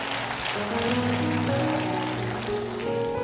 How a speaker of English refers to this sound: Clap your hands and give God a hand of praise.